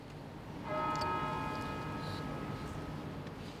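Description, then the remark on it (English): After a brief silence at a vigil in Guildhall Yard, London, a church bell strikes once and its bright, ringing tone hangs and slowly fades over a steady outdoor background hum. “The country's political leaders stood beside each other as silence fell before the bells rang at Guildhall Yard in London.”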